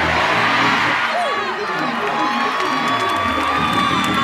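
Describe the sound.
A large audience at a church service stomps their feet and erupts in loud, sustained shouting and cheering, a dense wash of voices with scattered whoops rising above it, steady in volume for several seconds.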